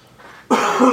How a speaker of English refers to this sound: Excuse me, I have a bit of a cough tonight. Came out of nowhere. I've been fine all day.